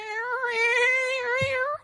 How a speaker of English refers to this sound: Oh, he's meowing.